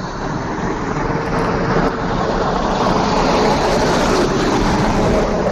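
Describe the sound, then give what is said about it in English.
A truck roars past on a very loud, busy road where a man is walking, a loud, steady rumble and hiss that fills the whole stretch with no letup and no voices. “What the f*** was that? Was that an F-111? Truck.”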